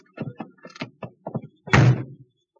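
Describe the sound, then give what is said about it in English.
A car door opens with a few quick clicks and latch rattles, then shuts with a single solid thump that trails off briefly. No one speaks. “This is my car. Sergeant Quinn, watch that tavern door for a girl in green. Get in”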